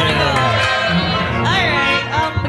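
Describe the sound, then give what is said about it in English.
A loud crowd gives a round of applause for a person being introduced, clapping and cheering continuously, with whoops and shouting voices rising above the dense wash of applause for a couple of seconds. “Last but not least, ladies and gentlemen, a round of applause for”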